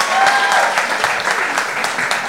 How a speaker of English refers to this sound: Okay, can we do like a quick poll of the room? Clap if you're looking for a job at a podcast company. Clap if you're not looking for a job at a podcast company.